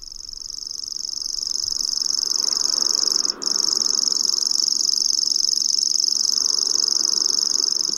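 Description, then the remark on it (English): A grasshopper warbler, a bird that sounds like a grasshopper, reels continuously, a high, insect-like mechanical trill that runs steadily for the whole clip with one momentary break, unaccompanied by any voices. “So this is actually a grasshopper warbler.”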